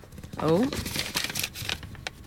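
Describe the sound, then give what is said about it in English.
Paper crinkles and rustles as a folded sheet is unfolded, a dense run of crisp crackles lasting a couple of seconds, with a brief voiced murmur near the start. “please open your bit of paper”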